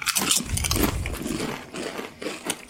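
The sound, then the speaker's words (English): Loud crunching of smoky-meat-flavoured chips from a pouch being bitten and chewed, a dense burst of crackly snaps that continues in irregular bites for a few seconds with no talking. “Crunch into this together.”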